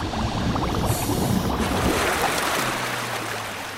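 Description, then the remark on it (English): Water churns and splashes in a steady, noisy rush as divers break the surface beside their boat after following the anchor line up, with a low engine-like hum coming in near the end. “We just surfaced.”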